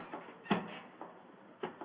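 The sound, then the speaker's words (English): A door up in the gallery opening, heard as a soft wooden clunk followed by a second similar knock a second later, with fainter clicks between them and no voices. “Look up there in the gallery. The door's opening.”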